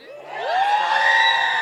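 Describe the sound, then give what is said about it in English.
An audience lets out a rising, sustained "woo" whoop on cue, many voices sliding upward and holding together in a loud cheer that stays strong to the end, with no speech. “So we're going to get more aggressive with our cheering.”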